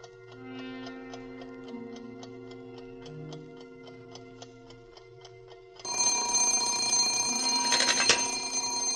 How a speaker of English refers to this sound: Hello? Oh, I'm sorry, operator. It's my alarm clock.